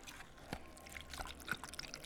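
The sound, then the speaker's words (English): Quiet, wet sloshing and squelching as ceviche ingredients (fresh fish with a generous pinch of salt) are stirred together in a bowl, with a few soft clicks and splashes spread across the moment and no voices. “And look, get a bit of that action, just mixing all that up together.”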